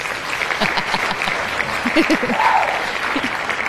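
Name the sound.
applause sound effect button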